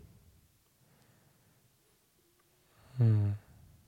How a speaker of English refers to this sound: He's thinking. Like breathing all hard too. Oh man.